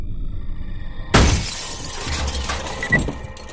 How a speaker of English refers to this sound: someone hurled a concrete block through the glass door of her home.